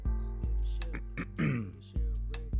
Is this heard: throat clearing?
yes